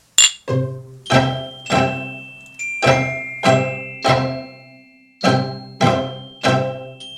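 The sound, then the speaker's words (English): Glasses clink together in a toast at the Langham in Pasadena, about eleven bright, ringing strikes in a steady rhythm with a short pause partway through. Each chime rings out briefly and clear, with no voices. “All right, so cheers to the sun. Cheers to a new podcast. Cheers to being at the Langham.”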